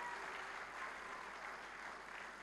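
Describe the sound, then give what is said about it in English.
An audience claps for the Lord steadily for a few seconds, a dense, continuous wash of many hands with no voices standing out. “Come on, give the Lord a clap. Let's give him a clap.”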